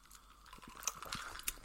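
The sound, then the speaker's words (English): Someone sips a tall icy ginger drink: soft slurping noises broken by two bright, sharp clinks of ice against the glass, all fairly quiet with no talking. “Okay, so nice tall icy drink.”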